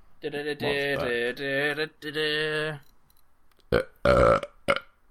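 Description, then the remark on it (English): Someone burps a short tune: a string of loud, drawn-out, pitched burps that rise and fall like a melody, followed after a pause by a couple of brief, rougher bursts. “I tried to burp”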